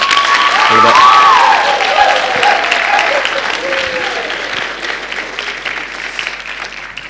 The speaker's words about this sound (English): And so, yeah, just a big round of applause again for...